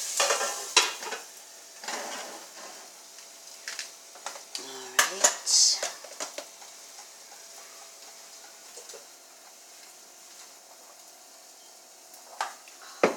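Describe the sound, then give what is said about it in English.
Food being browned sizzles steadily in a hot pan, a constant crackling hiss punctuated by sharp pops and the clink and scrape of a utensil against the pan, louder in the first few seconds. “You can see the brown kind of crisping on the outside, so you know to turn them.”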